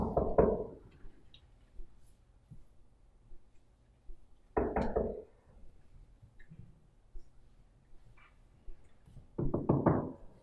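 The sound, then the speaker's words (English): Three clusters of hollow, muffled knocks, each a quick burst of several raps, separated by a few seconds of quiet. The knocking sounds dull and enclosed, coming from inside a wooden box with a man inside it. “Then he realizes that that knocking noise, oh, that's coming from inside the box.”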